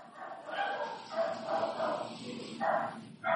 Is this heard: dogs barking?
yes